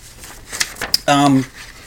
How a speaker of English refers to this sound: I'm trying to quietly open up this sheet of paper.